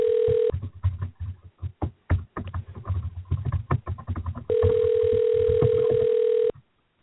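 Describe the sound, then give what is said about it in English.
An outgoing phone call rings with a steady ringback tone, two long tones with a stretch of clattering clicks from a keyboard next to a microphone between them, and nobody picks up before it cuts to silence. “nobody else would answer the phone”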